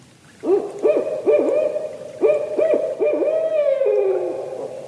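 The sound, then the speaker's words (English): Barred owls calling to each other to claim their space in a loud series of rhythmic hoots with rising and falling inflections, the calls bunched into rapid bursts and ending in a long descending note, with no voices present. “The sounds you've been hearing of the barred owls calling were given to us to use by the Macaulay Library at the Cornell Lab of Ornithology.”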